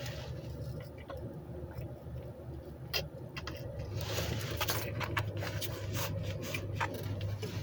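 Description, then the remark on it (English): Someone sips melted iced tea, with a run of wet slurping and crackly squishing noises that grow busier halfway through, over a steady low hum. No one speaks. “This iced tea finally melted.”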